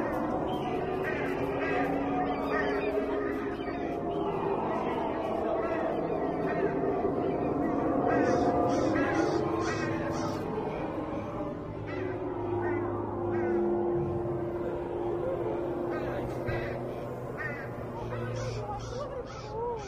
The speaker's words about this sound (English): Oh, we got some crows up here picking apart the scarecrow. No, definitely not scared of the scarecrow. Picking them apart. The birds, yeah.